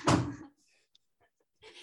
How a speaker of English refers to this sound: So my kids are just loud. So I'm shutting the door.